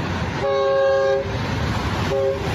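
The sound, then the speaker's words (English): A train rumbles past, its horn sounding one long steady blast and then a shorter second toot over the constant low roar of the cars. “Train.”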